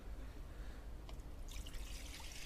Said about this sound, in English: And after that, the Bible says that he took water and he poured it into a basin.